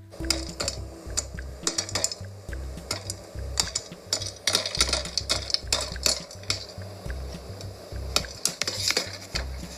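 popcorn popping

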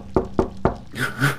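knocking on a door

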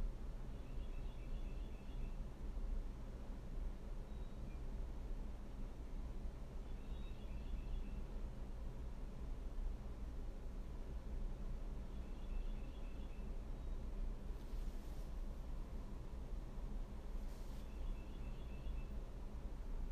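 birds chirping

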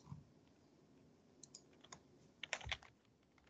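computer keyboard typing

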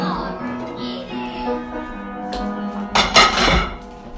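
dishes clinking

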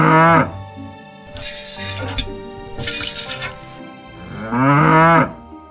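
cow mooing

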